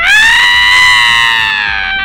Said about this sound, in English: He's slouched over with long hair and a heavy brow, and he holds a crude club in his hand and wears a leopard skin tunic. The man takes one look at the crew and runs screaming back into the woods.